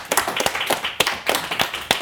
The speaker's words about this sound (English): Round of applause for Tom Neenan.